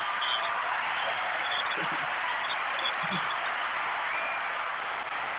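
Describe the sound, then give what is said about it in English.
A sustained burst of applause, many hands clapping in a dense, steady wash of sound that holds at an even, fairly loud level for several seconds without any talking. “They get longer and longer with them claps, don't they?”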